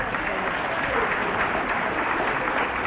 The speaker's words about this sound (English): Anyway, give her a clap. Isn't she lovely?